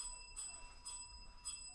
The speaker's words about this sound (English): Here comes the bell.